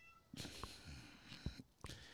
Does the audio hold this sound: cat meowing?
yes